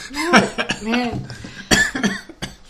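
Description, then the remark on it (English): A person coughs several times in short, harsh bursts, mixed in with voiced sounds and bits of talking. “Oh, I'm coughing.”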